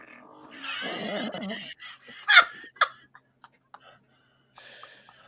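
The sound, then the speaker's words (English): A fart sound effect plays from a Google smart speaker on request: a drawn-out, buzzy, sputtering blurt lasting over a second, followed by a couple of sharp bursts and scattered snickering laughter. “Let's hear sounds of flatulence. This is a fart.”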